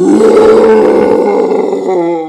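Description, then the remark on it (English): A voice imitates a Balrog's roar as it stomps off: one loud, sustained, growling bellow with a rough, low-pitched rasp, held steady for about two seconds before trailing off slightly. “And the Balrog stomps off, going...”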